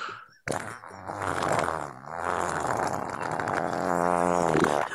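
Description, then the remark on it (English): A long, loud fart rips out for several seconds, sustained, its pitch wobbling and rising with a buzzy, rasping tone, and no one talking over it. “This fancy eyebrow burner sinus cleanser fart”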